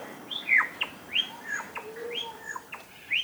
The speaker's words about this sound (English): And all the different sounds that lyrebirds make.